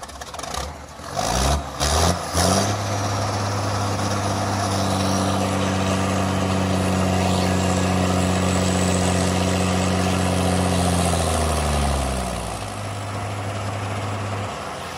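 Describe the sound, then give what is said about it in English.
Diggers move dug-up sediment around a park lake site, reusing it to build up the lake edges and make island features in the lagoon. Their heavy diesel engines idle and work with a steady low rumble, a few sharp clanks and knocks at the start, then the engine tone drops in pitch as it eases off near the end. “We're reusing all the sediment on site, so everything we dig up, the diggers are moving the sediment around.”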